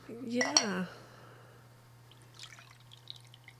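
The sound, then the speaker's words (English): A short pour of a drink from Bradford Brew Station into a glass, its pitch rising quickly as it fills, followed by faint drips and small clinks of glassware over a steady low hum. “Let that pour.”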